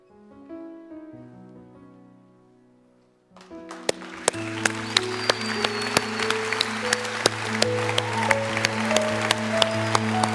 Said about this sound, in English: You cheer them on, you guys. You cheer them on.